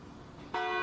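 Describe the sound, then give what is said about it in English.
A large bell at a local church, rung by participants in a monthly interfaith event called the 11th Hour Calling, strikes once partway through, its loud, rich tone ringing on after a quiet stretch of low background noise. “Participants ring the large bell at a local church.”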